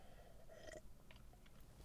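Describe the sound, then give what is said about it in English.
A quiet slurping sip of coffee, followed by a few soft mouth clicks and a swallow, with no one talking. “And you got to bear with me, too, as I sip my coffee here along the way.”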